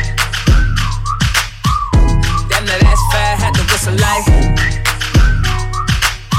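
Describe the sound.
A high, sliding whistled melody rides over a loud hip-hop beat, with booming bass kicks landing steadily about once a second and no voices.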